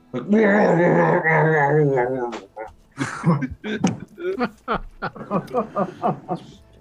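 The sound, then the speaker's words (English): A deep, rumbling growl in a bear-like style, voiced by a woman telling a story as a bear, holds for about two seconds, followed by choppy vocal sounds resembling talk. “starts growling. She's telling him the story, but she's just as a bear.”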